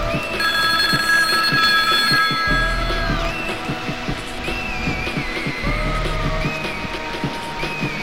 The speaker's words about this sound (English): Excuse me, the telephone's ringing.